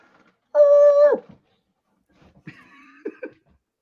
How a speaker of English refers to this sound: Man, our dogs, man. Dogs, you never know. And they're going to start barking. You got to check to see what's going on.